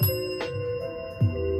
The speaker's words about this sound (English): ring the bell twice for you.